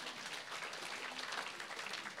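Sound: applause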